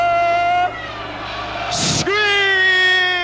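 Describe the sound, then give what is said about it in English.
A party crowd from Bronx River yells "ho" back in unison, a long drawn-out chorus of voices that rises in pitch, broken briefly by a hissy burst of noise before the shouting carries on loudly. “If you from the Zulu Nation, Bronx River, I want everybody to say, ho!”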